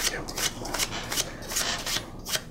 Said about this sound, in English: I'm going to shuffle the cards. Give them a few cuts.